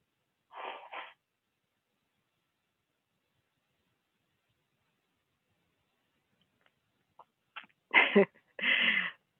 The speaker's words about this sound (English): Whenever I have to blow my nose when I'm giving teachings, I think about a time when I was in ministry school, and one of the associate ministers blew his nose up on the stage at the podium, and people complained.